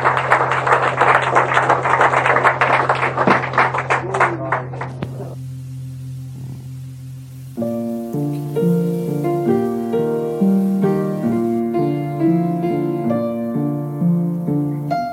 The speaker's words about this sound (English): A lively discussion there, and I think as Keith Skinner deserves a round of applause for sort of directing it through the mayor of the alleyway. Nice round of applause for him.